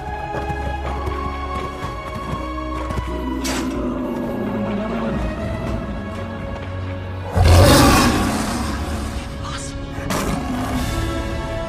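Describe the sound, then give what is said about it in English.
A lion roars in one loud, deep burst that swells suddenly out of a steady rumbling background, then fades back into the low ambient noise. “And a lion's roar isn't exactly quiet, is it?”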